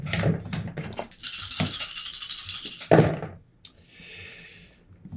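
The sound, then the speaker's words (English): Dice rolled for a sneak attack clatter together in a hand, a dense hard rattle lasting over a second, then a sharp clack as they hit a surface and roll briefly before settling. “So I'm putting my dice together.”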